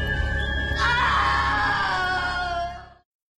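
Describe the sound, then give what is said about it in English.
A woman lets out a long, loud scream that rises sharply after a moment and holds for a couple of seconds before cutting off abruptly, apparently a voice imitating a dramatic scream. “We need a meme gif of her just screaming, no!”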